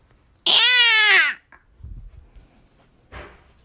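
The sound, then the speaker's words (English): A person imitates a cat with one loud, drawn-out meow lasting nearly a second, bending up then down in pitch, followed by a few quiet shuffles and a short breathy sound. “What sound does a cat make?”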